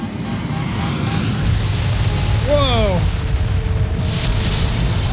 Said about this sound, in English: Apparently the spaceship is crashing.